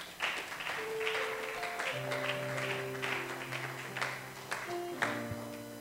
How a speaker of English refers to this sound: If you want to clap, do it well.